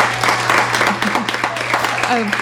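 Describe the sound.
Steady, dense applause from a group, a loud continuous crackle of many hands clapping, with voices calling out and chattering underneath throughout.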